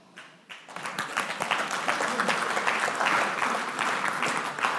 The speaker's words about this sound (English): I am getting more and more confused about when and why you clap. I love it, but I'm completely confused by it, and I'm very grateful.